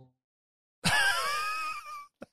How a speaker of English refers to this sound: Yeah, he's snoring like a fucking chainsaw.